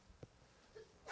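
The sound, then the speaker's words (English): A single sneeze bursts out sharply at the very end after a quiet, faint lead-in, with no talking around it. “Bless you.”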